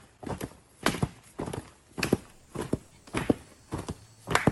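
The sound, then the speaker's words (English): Steady footsteps striking the ground during combat drills in a training area in Tallahassee, Florida, about a dozen sharp, hollow thuds in an even walking rhythm with no voices. The impacts could easily pass for hoofbeats clip-clopping. “Foot, touching the ground.”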